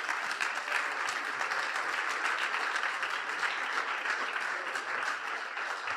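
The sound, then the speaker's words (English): A crowd claps steadily for the full stretch, a dense wash of many overlapping hand claps at a constant, fairly loud level without swelling or fading. “Let's give a little round of applause for that, all right?”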